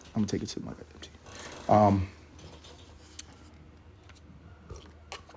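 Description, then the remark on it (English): A quiet sip of hot tea, with soft mouth clicks and a short slurp, then a brief voiced sigh before near silence. “I'm going to take a sip of my goddamn tea.”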